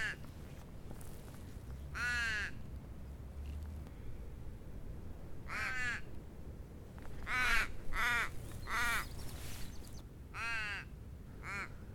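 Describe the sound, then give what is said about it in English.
Several crows caw from a casuarina tree in harsh, scattered bursts, some loud, others overlapping in quick runs, over a steady low outdoor rumble with no one talking. “My Casuarina is full of crows,”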